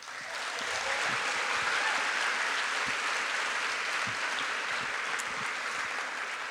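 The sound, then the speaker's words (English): An audience claps steadily for several seconds for the evening's contributors, a dense, even wash of many hands with no voices standing out, holding at a constant level throughout. “So we give them a round of applause.”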